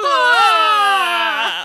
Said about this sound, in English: He peels back the curtain. He holds up the knife. She sees it, looks at him, and lets out a horrible scream.